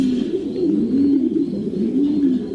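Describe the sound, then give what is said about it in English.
Pigeons coo steadily in a pigeon loft, a continuous overlapping run of low, throaty, rolling calls with no pauses and no voices. “And all the pigeons would be standing on their perches looking at me.”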